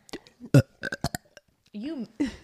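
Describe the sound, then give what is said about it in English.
A loud burp with a rough, drawn-out croak, surrounded by short bursts of voices and laughter-like sounds. “You made it. I can't make myself burp.”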